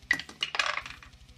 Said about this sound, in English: I said the dice was fired and then I rolled the same dice because he missed again.